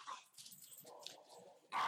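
Dogs bark in a couple of short bursts as they are let out, a brief yelp at the start and a louder bark at the end, with quieter rustling and yips in between.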